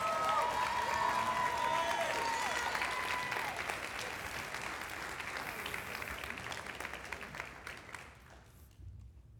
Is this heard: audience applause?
yes